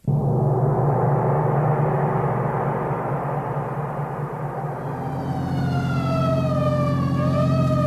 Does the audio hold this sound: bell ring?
no